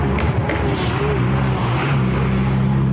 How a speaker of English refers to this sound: God, they come fast. Back to nighttime, where we almost got hit by a big truck.